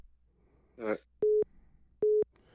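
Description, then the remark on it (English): Two identical telephone beeps from the speaker's wife calling in, each a short, steady mid-pitched tone, loud and spaced under a second apart, after a brief burst of voice. “And then we have my wife calling in, so you go hear some beeps.”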